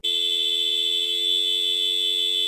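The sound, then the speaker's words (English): A car's disc horn, the motorcycle-style type Ford uses on the new Ford Ranger for markets such as South America, China and India, honks in one steady, unbroken blast. It is loud and buzzy with a bright, harsh tone, held for a couple of seconds with no voices. “For those markets, Ford uses disc horns, like you might see on a motorcycle, and can be found on the new Ford Ranger.”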